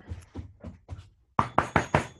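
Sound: knocking on a door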